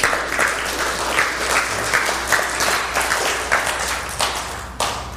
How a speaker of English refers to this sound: Slow clap. Thanks, guys.